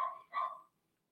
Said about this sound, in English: My dog bark.